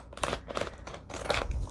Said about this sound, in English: going in with my pink and shears. Going through, they're fabric scissors, but I use them on paper and fabric.